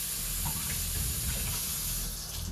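Water pours steadily into a glass or container for a morning drink of vinegar, water and lemon, a continuous gush with a soft hiss that holds at an even level for a couple of seconds, with no voices.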